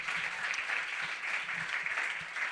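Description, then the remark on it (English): Sustained audience applause for author Jessica Greenbaum at a ticketed book event, a dense, steady wash of many hands clapping at even loudness throughout, with no voices over it. “Give a big round of applause for Jessica Greenbaum one more time.”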